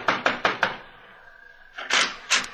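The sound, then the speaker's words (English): Four quick, evenly spaced knocks on a door by Mr. Val, a short pause, then a couple more heavier raps. The knocking is fairly loud, with no voices. “Knock on the door, Mr. Val.”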